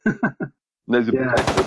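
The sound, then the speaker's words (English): Three short, punchy bursts, then a voice talking, and near the end a loud, rapid stream of automatic gunfire from a bump stock rattles in over the speech. “that's supposed to be the bump stock”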